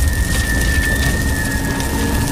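Steady rain patters onto a hard wet surface, a dense continuous hiss with low rumbling underneath and a faint tonal whine. No voices, just the constant downpour.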